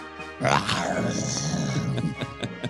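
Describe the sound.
A person imitates a kaiju monster roar with their voice, a loud, growling, sustained rasping bellow of nearly two seconds, followed by a few short breathy gasps.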